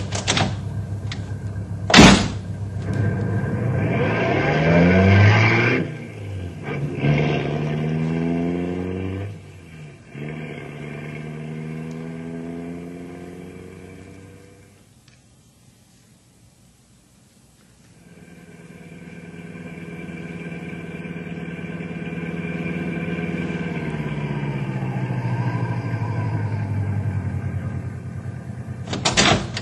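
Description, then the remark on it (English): A couple of sharp car door slams as people hop in, then an engine revs with rising and falling pitch as the vehicle pulls away up the road and fades, before a steady engine drone builds again. “Okay, hop in. We'll take a look.”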